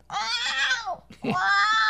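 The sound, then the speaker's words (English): A person imitates a cat with two drawn-out meows, the first longer and falling in pitch, the second rising after a short pause, loud and nasal. “And then I do, of course, the kitty.”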